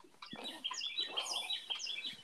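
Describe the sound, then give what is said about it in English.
Several small birds chirp and tweet continuously in a quick, overlapping chatter, with a faint rustling background and no voices. “My boy got the birds in the background.”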